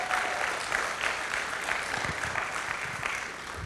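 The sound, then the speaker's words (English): A steady round of applause from many people, dense and sustained clapping that stays at an even, fairly loud level throughout without any talking over it. “Come on, if you believe that, give him a good round of applause.”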